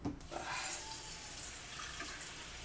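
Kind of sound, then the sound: household object, water being poured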